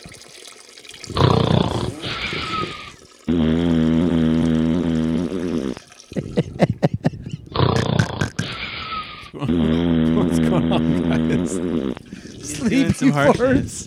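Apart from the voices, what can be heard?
farting sounds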